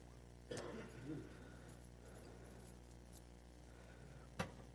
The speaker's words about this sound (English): Someone remind me that I put my keys here in the pulpit just in case I can't find them later.